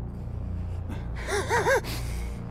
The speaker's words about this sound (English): I know it's not good for the podcast, but there's a lot of sniffing going on.